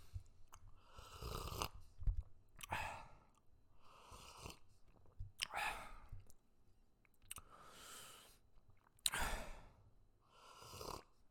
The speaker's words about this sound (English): Coffee sip.